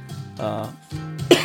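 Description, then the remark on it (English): Raspy coughing from a person with asthma, in a short series of bursts, with some throaty, voiced rasp between them and a sharper, louder cough at the end. “if I cough, boy, my asthma been kicking my butt, y'all.”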